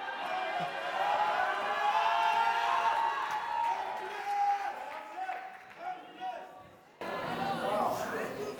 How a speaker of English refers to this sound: If you believe in the Lord, shout. Clap your hands, all you people, and shout unto God.